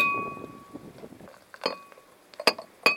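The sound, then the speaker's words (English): A small metal bottle cap clinks against a beer glass as a lively beer is poured, with a ringing chime at the start, fizzy pouring noise, then a few sharp clinks near the end as the cap falls into the glass. “That's so lively my bottle cap fell in the glass.”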